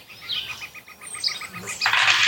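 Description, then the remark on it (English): Many dice, most of a large set, spill out with a sudden bright, dense clatter of clicks near the end, following a run of quick, evenly spaced high chirpy ticks; no one speaks. “Don't worry, I'm not rolling all of these that you can hear spilling out.”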